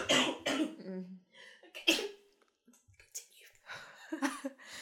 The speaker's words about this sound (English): Oh, let her cough.